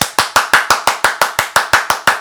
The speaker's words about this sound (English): We're just going to do a pop quiz and see if you do the right number of claps. The stars at night are big and bright.